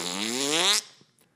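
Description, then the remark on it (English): A loud, buzzy fart noise imitated by a voice, one sustained raspy blast that wavers slightly in pitch and cuts off abruptly, recreating a fart squeezed against a plastic chair in a silent library. “I was sitting in this plastic chair, tried to eke that bad boy out, and the chair sucked the fart out of me and reverberated it, like, through the entire library.”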